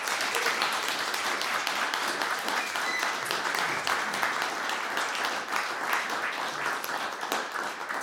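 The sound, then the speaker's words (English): A crowd applauds steadily, many hands clapping at once in a dense, even wash of sound that holds at a constant loudness for the whole stretch, with no voices standing out. “A round of applause.”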